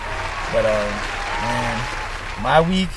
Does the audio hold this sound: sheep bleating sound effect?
no